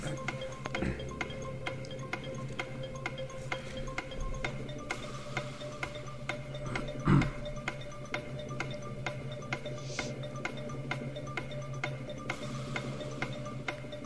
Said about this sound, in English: Right. Start the clock. One minute.